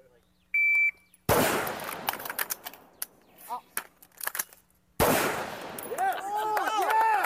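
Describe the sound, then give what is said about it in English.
A shot timer beeps once, then a burst of sharp, loud gunshots from a Glock 19 pistol and a BCM rifle rings out during shooting drills by a first-time real-firearm shooter: a quick string of cracks in uneven rhythm, followed by another volley of shots that continues to the end. “can he get onto a real firearm, a Glock 19 and my BCM, and slay drills having only done airsoft?”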